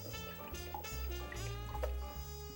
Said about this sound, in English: My Swiss chard has been cooking for about 5 minutes, so it's nice and tender, so I'm gonna drain that, rinse it with a little cool water, and squeeze out all of the excess water, as much as you can get.